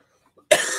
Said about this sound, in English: Okay, sorry about that big old cough then.